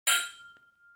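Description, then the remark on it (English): Two glasses clink together once in a toast, bright, leaving a clear ringing tone that lingers and fades, with a faint second tap partway through the ring. “Cheers. Cheers.”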